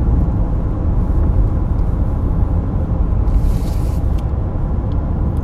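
Steady, loud low-frequency road rumble from a car moving at speed, a continuous dense roar with faint hissy bursts near the end and no talking.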